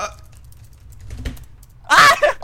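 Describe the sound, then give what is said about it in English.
Soft, rapid clicking of fingers typing on a computer keyboard, an answer being typed during a quiz game, followed by a short burst of a person's voice near the end. “Curse my typing.”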